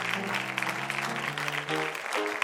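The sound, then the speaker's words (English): An audience at a church service claps steadily together in praise of God, a dense, continuous patter of many hands, while sustained organ-like chords play underneath. No one speaks. “If He's been good to you, why don't you just give Him a hand clap?”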